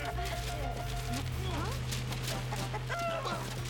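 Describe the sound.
A chicken clucks in short, choppy bursts over a steady low hum and busy background noise, with voice-like sounds mixed in.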